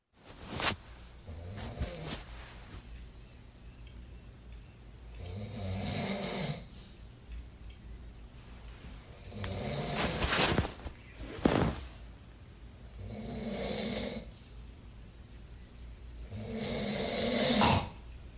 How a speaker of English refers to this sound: yo, you snore like crazy. I was like, please tell me you recorded it. And he looks at me and goes, fuck yeah, I did. So here it is, watch, ready? Tell me if you guys can hear this.